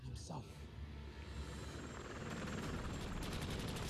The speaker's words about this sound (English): Helicopters.